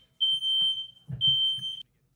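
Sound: smoke detector alarm beeping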